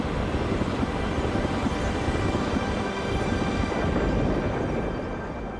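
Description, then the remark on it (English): A deep, continuous rolling rumble of thunder from super powerful lightning on Jupiter, loud and steady throughout with a dense low roar and no sharp cracks, echoes of echoes blending back and forth; no one speaks. “You have these super powerful lightning bolts.”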